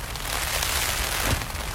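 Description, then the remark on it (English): Heavy rain lashes in spurts against the windows of a bothy on the Cape Wrath Trail in the Western Highlands of Scotland, a dense, continuous, fairly loud hiss with a brief surge of stronger drumming near the end and no voices. “I'm getting used to it, happy to hear it thrashing the bothy. It comes in spurts as if flung at the windows,”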